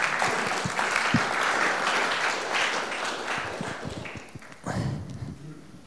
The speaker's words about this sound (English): Let's clap them again because they're still coming.